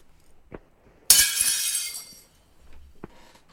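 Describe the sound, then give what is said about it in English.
Glass shatters with a sudden loud crash, a bright burst of breaking shards that rings out for about a second before fading, with a few small clinks before and after. “Is that a broken glass? Yeah, plate or a glass, yeah. Very right.”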